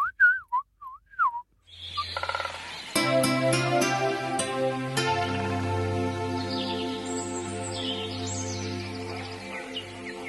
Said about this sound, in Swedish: 00:02 på natten fram till klockan 5 på morgonen så hade de direkt sända fågelsånger från hela Sverige. Så då kunde man så här i en halvtimme höra så här, och nu är vi Stavsjö på södra Öland. Och så var det så tyst jättelänge, sen hör man så här.